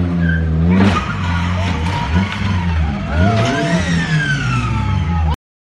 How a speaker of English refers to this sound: He just hit him with the car.